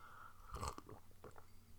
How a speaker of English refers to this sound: I'm just slurping on slurp.